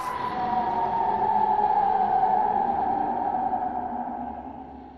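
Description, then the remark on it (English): A strange, inhuman animal noise, a growl blended with a deep caw, held as one loud, steady wailing tone for several seconds and sinking slightly in pitch toward the end, with no talking. “And I think also like kind of a very strange inhuman animal noise that sounds like a growl and a deep caw kind of intermingling with each other.”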